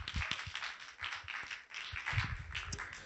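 An audience at a church service in Queens, New York, applauds steadily as a guest speaker comes up, a dense, crackling wash of many hands clapping at once with no break, fairly soft overall and with no voices over it.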